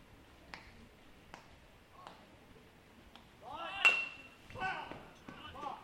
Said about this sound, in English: But as you can hear our crowd mic and the stands, the middle stand above us, the overhang, you can hear the rain hitting on it pretty good.